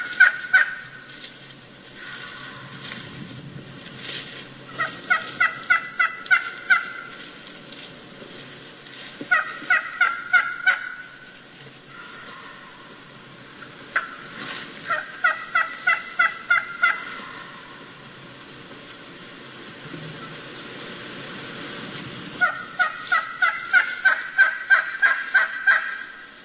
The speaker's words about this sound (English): Now here's another hen who just left the gobbler not long ago, and she's just telling the gobbler that I'm here, I'm just over here.